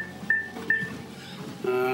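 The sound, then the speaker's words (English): Two short, high electronic beeps from treadmill speed buttons pressed to raise the speed to 4.6, about half a second apart, followed by a lower, steadier tone, all over a constant mechanical hum with no talking. “Well, let's get the speed up first.”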